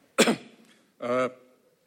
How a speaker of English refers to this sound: I'm going to grab a glass of water. I think Catherine Mansfield coughed a lot like this when she was in Montan.